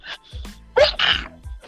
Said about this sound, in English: Look at this sneeze, guys.